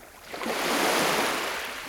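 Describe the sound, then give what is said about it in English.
A wave washes in and swells into a broad hiss of surf, then eases back slightly, with steady rushing water filling the two seconds and no voices. “Hi, I'm Christiana Figueres, and you're listening to the sound of ocean waves.”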